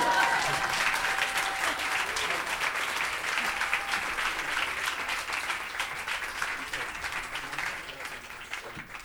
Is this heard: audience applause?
yes